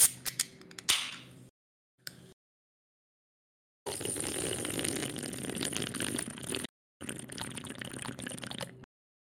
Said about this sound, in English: That was an incredible slurp, dude.